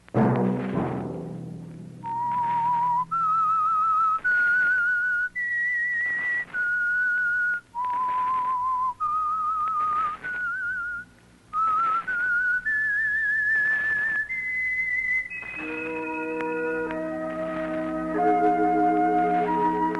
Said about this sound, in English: That whistle be your signal for the Signal Oil program, The Whistler, each Sunday night at this same time